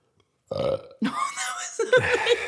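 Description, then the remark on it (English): A loud burp rumbles out in a few drawn-out, gurgling pulses, rising and shifting in pitch over about two seconds, with no talking around it. “I'm leaving all burps in, mine and yours.”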